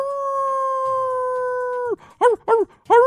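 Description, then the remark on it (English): A person howls like a werewolf: a long, steady howl holds for about two seconds, then breaks into three short, rising-and-falling yelping howls in quick succession, loud, with no talking. “Did you not realize when he howled like a werewolf”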